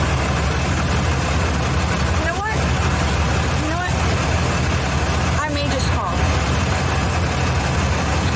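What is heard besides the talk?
large truck engine idling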